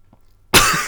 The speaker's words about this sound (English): sorry. Coughed again.